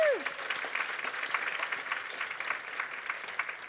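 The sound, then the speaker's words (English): An audience at a literary event titled Baddest Art Friend, part of the Constellation series, applauds steadily, a dense, even patter of many hands clapping throughout, with a brief falling tone at the very start. “Can we give Rosabelle a round of applause?”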